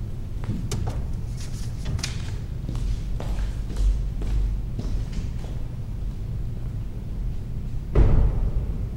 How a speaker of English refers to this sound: get up and walk away, like get up from the piano, walk away, and close a door at the very end of this.